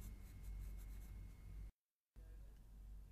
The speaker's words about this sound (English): You have 1 minute to plan your answer. Here is a pencil and paper to make notes.